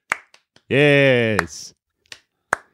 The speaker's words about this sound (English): Yes. Alternating claps.